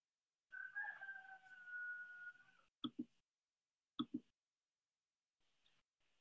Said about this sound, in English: The rooster is cheering us on. You heard the rooster.